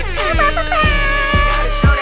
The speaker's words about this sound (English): Let me get some air horns.